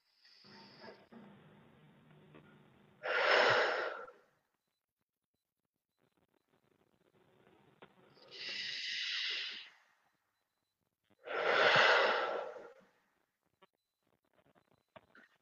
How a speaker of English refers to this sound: So just starting now, just three big deep breaths. So breathing in through the nose. Then really letting it go through the mouth.